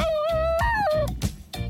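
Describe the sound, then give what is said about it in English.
A Basenji dog gives a short yodeling whine as air is forced through its differently shaped larynx, a clear tonal cry that holds steady, jumps higher, then slides back down, with a few soft thumps and rustles underneath. “As air is forced through the larynx, instead of getting a barking sound like other dogs, you get a yodel or a baru.”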